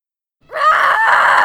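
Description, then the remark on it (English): A single loud battle yell bursts out after a short silence, a strained, rising voice held at full force for about a second, alone with no other sounds. “The yell tears out of my throat as I channel power into the inferno, engulfing one of the worms in a billowing pyre.”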